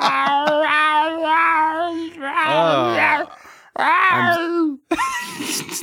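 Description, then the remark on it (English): A man imitates a distressed cat in heat, letting out a run of long, wavering, whiny yowls and moans, loud, with short breaks between the cries. “in some sort of distressed kitten heat where he's both deeply upset and unapologetically Randy.”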